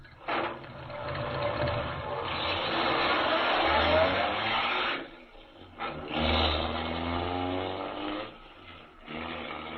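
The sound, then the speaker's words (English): A car engine roars and revs hard for several seconds, dips briefly, then surges again as the car speeds away from an inn along a forest road, loud with a rough, mechanical rumble. “Speeding away from the inn, Major Carroll is unaware that the wily Gottfried has sent him on a false trail”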